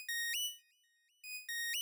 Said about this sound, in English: And then the Araswati kind of reaches to their like V golden button and does something to it, and then you hear a comms beep.